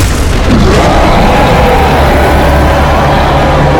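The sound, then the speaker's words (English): An enormous purple worm bursts vertically out of the sand and into the air near the center of a town, with a loud, sustained roaring rumble: deep booming low end and gritty noise across the whole range, steady for several seconds with no speech. “As near the center of town, you see this enormous purple worm burst vertically out of the sand and into the air.”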